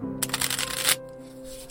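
A quick riffle of playing cards being shuffled, a crisp, rapid fluttering burst lasting under a second, then a soft low hum that lingers.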